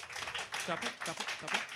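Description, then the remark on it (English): A thin, scattered smattering of clapping from a small crowd voting by round of applause on whether Xavier's is the worst fictional educational system, irregular and fairly quiet, with a few voices murmuring and calling out over it. “Tepid, I would say the response was.”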